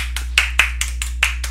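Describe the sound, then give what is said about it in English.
Quick, steady claps made with a phone, about seven sharp smacks in a row at an even rhythm, fairly loud with no voices over them. “And now he's clapping with a phone, everybody.”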